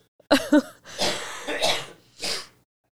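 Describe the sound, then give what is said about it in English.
A few harsh coughs in quick succession, three rough bursts following a brief voiced grunt, with no talking around them. “I've coughed like three times.”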